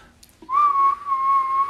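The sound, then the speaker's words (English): A person whistles a single sustained, slightly wavering tone that starts abruptly and holds steady for over a second, loud, imitating an odd whistling noise with no talking. “They just made him, had to make those weird whistling noises.”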